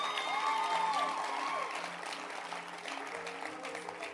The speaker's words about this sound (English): Clap your hands for the camp.